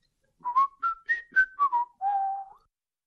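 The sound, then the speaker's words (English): Someone whistles a short, clear tune of several quick notes rising and falling, ending on one longer held note, heard alone with no talking. “And here is what whistling is.”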